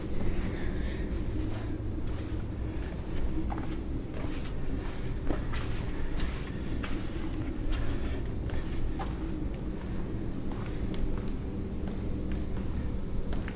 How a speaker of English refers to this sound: Can you guys hear that? Can you hear footsteps? Okay, that's good. Because that's just me.